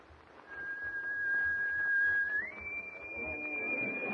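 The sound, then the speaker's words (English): An eerie, sustained whistle aboard a ship holds one steady high note for about two seconds, then slides up to a higher pitch and lingers there over a low, murky background rumble. “And you ain't telling me he was the one what just whistled you, ain't?”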